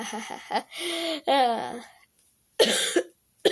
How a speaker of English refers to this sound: Don't ignore the coughing. I'll do that a lot, probably. I got a cold. Or allergies, one of the two.